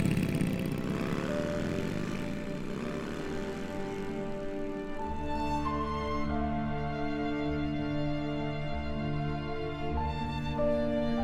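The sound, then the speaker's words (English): The engines of a pair of motorbikes rev up and roar away as their riders drive off, a loud, steady mechanical drone with the pitch climbing and then holding as the bikes pull off. No voices are heard. “with only a sad, casual wave to them, before they jumped onto a pair of motorbikes that had been sitting off to the side.”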